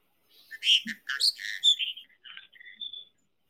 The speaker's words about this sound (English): … says hello to Tinkerbell and Fagla. She goes, my adopted baby birds.